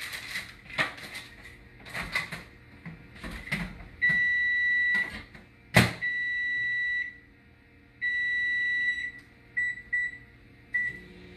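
An oven broiler timer beeps in long, steady electronic tones, several in a row with short gaps, signalling time to flip sirloin steaks being broiled. Sharp kitchen clicks and clatter come before them, and nobody speaks.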